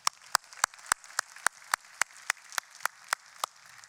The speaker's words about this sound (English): Please applaud.